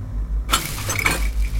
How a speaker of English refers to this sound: That's me putting these toys away.